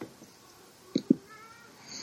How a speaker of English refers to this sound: God, that cat. This cat is killing me. This cat.